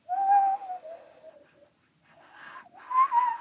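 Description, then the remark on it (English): A person whistles an imitation of a loon's wavering call, two long sliding tones separated by a brief pause, clear with no talking. “The loon. Man, that's a wild bird noise.”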